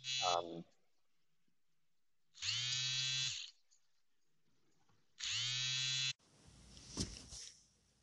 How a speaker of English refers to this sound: Sorry about that. My phone started ringing.